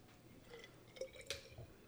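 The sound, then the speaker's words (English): Orange juice is poured into a shot glass, heard as a quiet trickle with a couple of distinct drips or splashes near the end. No one speaks. “And then do your orange juice, and I will orange pour juice my shot to halfway.”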